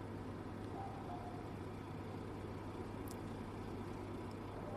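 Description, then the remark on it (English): A steady, low engine rumble drones on without a break from buses idling outside in a car park, heard faintly with no voices present. “As you can hear, there are dogs in the background, and don't know if you can hear the buses outside in the car park.”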